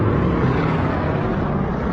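A steady, loud engine roar from an airplane at an air show, a broad rumbling drone that holds constant without breaks and with no voices over it.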